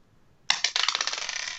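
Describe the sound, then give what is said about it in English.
A ten-sided die (D10), rolled for a command roll, clatters across a hard tabletop: a sharp first strike, then a quick run of bright, tapping bounces that grow denser and slowly settle, with no voices. “In which case, I'm gonna risk it all on that D10 to see if I can spur these horses into action quickly and get them to get us the fuck out of here.”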